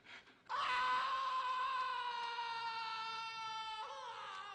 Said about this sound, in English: I want to hear you scream. You hear me scream?